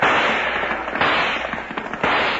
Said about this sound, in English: There's a whole gang down there pumping lead into the Charlton house.